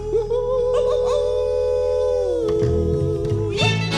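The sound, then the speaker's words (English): A person howls like a wolf in one long, loud, sustained note that slides slightly lower partway through, with low backing tones humming underneath. “We're gonna hoop and holler and howl at the moon.”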